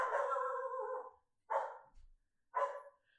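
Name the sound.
dog barking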